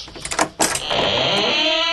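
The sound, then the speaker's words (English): A couple of short clattering knocks, then a drawn-out, high-pitched door squeak that holds steady and fairly loud for about a second, with no talking. “Can't help but notice the door's still squeaking.”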